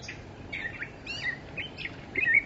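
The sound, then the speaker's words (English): A catbird sings its typical jumbled, disorganized song, a run of squeaky, warbling chirps and short whistled notes with a little meow-like call in it, fairly quiet and high-pitched, over a steady low background hiss with no talking. “And when he gets excited, he'll do his typical song, which is meow, which is why they're called catbirds.”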